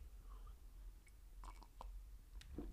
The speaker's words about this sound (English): let me take another sip of this horrible, horrible drink.